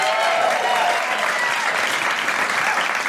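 A crowd claps steadily and loudly for a few seconds, a dense, even patter of many hands with no pauses and a few faint whoops or voices mixed in.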